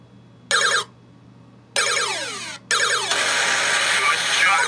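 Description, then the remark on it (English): A phone rings again and again: a short electronic ringtone burst, then longer sweeping ones, finally piling up into a loud, continuous jumble of overlapping tones. “But everybody's blowing up my phone.”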